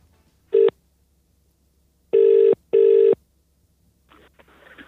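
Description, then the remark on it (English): A short electronic beep, then a loud double burst of a telephone ringing tone heard down the line as someone phones again, followed by soft rustling, like a handset being handled. “I'm going to phone again.”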